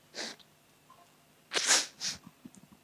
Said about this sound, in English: I was really conscious I sniff a lot.